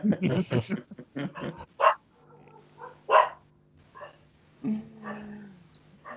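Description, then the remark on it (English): Dogs bark territorially in several separate sharp bursts, spaced a second or so apart. A person talks briefly before the barking, and a low steady hum sits underneath. “And the dogs are doing their territorial instinct number.”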